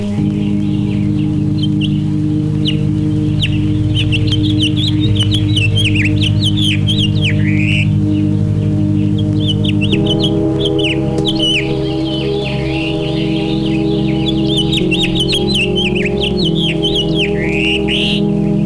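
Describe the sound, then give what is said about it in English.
A goldfinch sings a long, rapid run of bright twittering chirps and warbles, repeating without pause over a steady low hum of background noise. “The goldfinch you are hearing is a bird of the open fields or the edges of brushland.”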